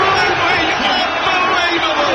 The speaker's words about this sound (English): Cheering in all those sports, like pool and all that stuff. I love it.